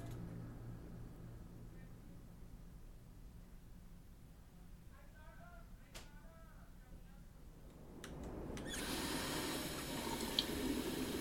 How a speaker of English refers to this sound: Really? This had better be good, she managed, washing her hands and gently splashing water on her face.